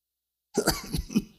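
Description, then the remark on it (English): A man coughs several times in quick, rough bursts and clears his throat, fairly loud, after a short moment of silence. “He coughs till the whole house is awake and the dogs are barking.”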